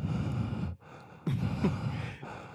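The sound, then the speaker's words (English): A voice imitates heavy, wheezy mouth breathing right up against the microphone, loud, mocking how a woman breathes when she speaks on the mic, with a brief pause between noisy inhales and exhales and no words spoken. “hosted by some big mouth-breathing”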